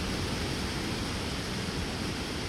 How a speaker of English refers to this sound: Turn this up just a little bit with the rain.